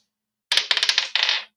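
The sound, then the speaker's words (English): Dice clatter across a hard tabletop in a quick burst of rattling bounces, fairly loud, then settle after about a second. No one speaks. “this dice is blessed, cursed. No, it's only blessed. I only make blessed dice.”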